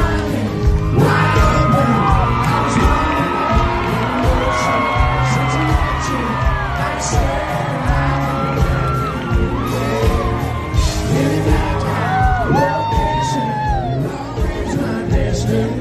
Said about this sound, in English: Just cool, man, because they look so happy together and the crowd was all excited. Anyway, that's a CMA Summer Jam, and that was recorded in Nashville at the Ascend Amphitheater.